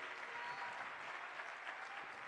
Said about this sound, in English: Now clap your hands like you believe.